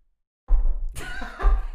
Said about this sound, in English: There's three people knocking. Three single unique knocks. Very weird.